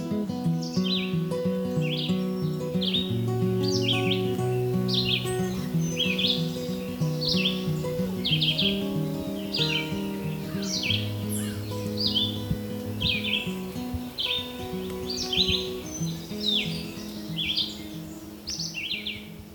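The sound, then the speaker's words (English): A Red-eyed Vireo sings short, sweet, whistled phrases again and again with brief pauses between them, near Hector Falls by a stream alongside a winding single-track trail. A steady low background rumble and hum runs underneath throughout. “Red-eyed Vireo”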